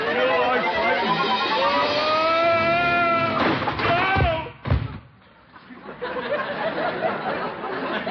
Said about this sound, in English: Oh, I tipped over in my chair. Must have fallen asleep.